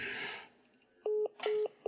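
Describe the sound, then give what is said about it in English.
A telephone tone after hanging up: a short burst of rustling noise, then a steady electronic beep pulsing on and off in quick, evenly spaced repeats, loud and clear with no voices. “Okay, I'll hang up my phone.”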